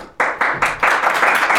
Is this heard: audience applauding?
yes